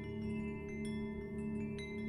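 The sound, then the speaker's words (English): During a sound bath, a deep gong's ringing tone hangs in the air and slowly fades, while a few bright, high wind-chime clinks sparkle over it at scattered moments. No voices are present. “Once again, there's a deep, clear echo from the gong, followed by a high-pitched clink of the wind chimes.”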